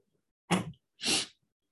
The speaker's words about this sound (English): Feel free to send a message and say, hey, next time let's edit out all the nose stuff. All the sneezing and the wiping and the nose and the... No one gives a shit about your allergies.